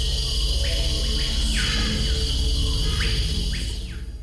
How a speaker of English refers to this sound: The Amazon is alive with more insects than any other place on Earth. Scorpions, beetles, wasps, spiders, and hundreds of different types of tarantulas flourish in the humidity. And the noise they make is deafening.